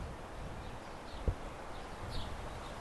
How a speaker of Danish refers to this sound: Jeg sidder i vejkanten. Solsorte og fasaner og biler. Og vind, der suser.